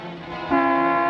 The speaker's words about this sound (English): What are you doing that for? What are you honking the horn for?